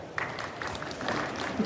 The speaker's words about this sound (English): You don't have to applaud for me. I'm just up here earning my paycheck.